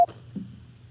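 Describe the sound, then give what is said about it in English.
A single short, sharp beep of a phone keypad tone, like a pound key being pressed, cuts off quickly and leaves a low, steady hum with a faint rustle. “Then press pound or simply hang up.”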